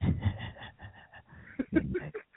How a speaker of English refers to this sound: I'm going with heavy breathing on the line.